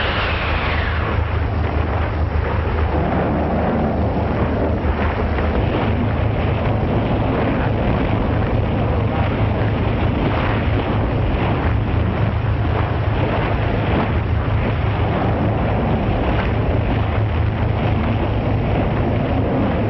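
A violent storm at sea: roaring wind and crashing waves fill the scene continuously, loud, with a deep low rumble underneath and no voices.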